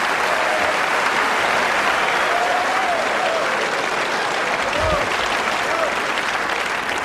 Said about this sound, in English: I don't believe you're supposed to cheer a prayer.